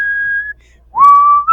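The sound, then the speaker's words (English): A person whistles the opening of a tune: a clear, steady high note, a short pause, then a lower sustained note that slides up at the end. Loud, with no talking. “But I always imagined like that would be my entrance song if I was a wrestler, because it starts out with like this whistling of like.”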